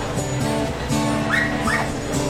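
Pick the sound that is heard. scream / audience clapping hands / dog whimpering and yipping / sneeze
dog whimpering and yipping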